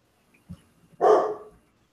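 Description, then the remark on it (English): A single loud, full-bodied bark from a black Labrador puppy rings out, preceded by a soft low thump, with quiet all around it and no talking. “Yeah, the big giant barking noise behind me, that would be my black lab puppy.”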